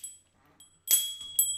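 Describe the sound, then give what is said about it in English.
A bell is struck sharply twice in quick succession, each hit a bright metallic clang over a high, steady ringing tone that lingers between strikes, with a fainter tap just before. “I just like hitting bells.”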